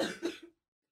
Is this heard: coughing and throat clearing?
yes